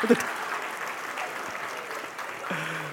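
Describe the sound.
A steady burst of applause from a group, a dense crackle of many hands clapping at once that holds its level throughout, with a brief low voice cutting in near the end.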